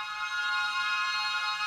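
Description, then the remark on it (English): A bright, sustained synth tone rings out steadily with a washy reverb tail, its high, shimmering harmonics holding at an even level throughout, with no voices present. “That's a reverb.”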